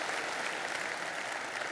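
A church audience claps together for the church volunteers in steady, dense applause, a sustained wash of many hands at an even loudness with no voices standing out.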